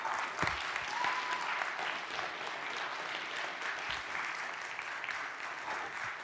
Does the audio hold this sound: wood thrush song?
no